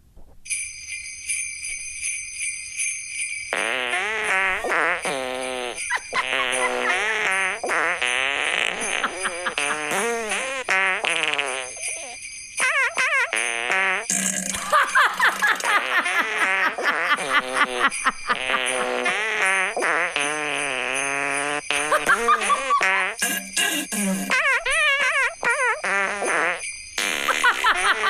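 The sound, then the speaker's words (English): A loud string of fart sounds pitched and sequenced into the melody of Jingle Bells, rising and falling in quick rhythmic phrases over a steady high-pitched drone, with no talking. “Those are some real toilet bowl guttural farts.”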